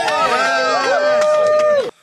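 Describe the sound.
A crowd at a political rally in New Hampshire cheers loudly for the phrase "day one dictator", many voices shouting and whooping together in a steady roar for about two seconds before it cuts off abruptly.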